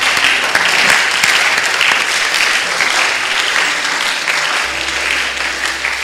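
A crowd claps loudly and steadily for several seconds, a dense wash of many hands with no pause, over a faint low hum.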